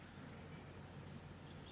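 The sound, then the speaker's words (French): A steady nighttime chorus of frogs croaking together, a continuous, fairly faint trilling drone with no pauses and no voices. “Disons que, voyez en ce moment, les grenouilles sont heureuses ce soir, quelle qu'en soit la raison.”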